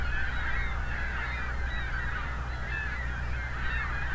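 A large flock of ring-billed gulls calls continuously, dozens of overlapping squawks and cries forming a dense, steady chorus over a low background rumble, with no voices heard.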